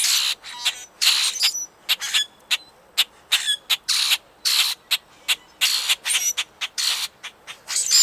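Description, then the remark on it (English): A dense chorus of harsh, squeaky grackle calls from a flock, overlapping rasps and creaks repeating rapidly and loudly throughout, with no talking. “Another reason why grackles are unloved is because their song can be harsh, especially when they're in a flock calling.”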